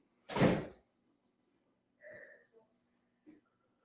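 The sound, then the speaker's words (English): A house's front door, right by a home office, bangs shut with a loud, brief thud as a son comes inside, followed a moment later by a faint squeaky creak and a couple of soft clicks and taps. “Sorry, my son is coming inside, in and out the front door right by my office.”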